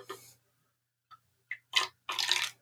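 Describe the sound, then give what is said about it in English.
Dark lager beer being poured into a glass: a short splash, a couple of small glugs, then two fuller bursts of frothy, fizzing liquid pouring, with no one speaking. “Actually, I'm going to pour a little bit more back in there.”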